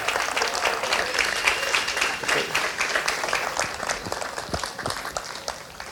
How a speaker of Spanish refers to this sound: Ya, den un aplauso bien grande.